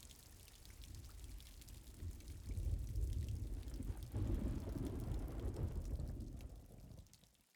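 Steady rain hisses throughout while a deep rumble of thunder swells through the middle and fades away near the end. No voices.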